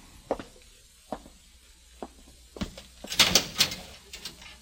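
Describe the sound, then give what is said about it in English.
A heavy metal cell door opens with a few sharp clanks and knocks, then a louder grinding, rattling burst of metal near the end. No one speaks. “I'd like you to walk to that cell in the far corner. Go in and close the door behind you.”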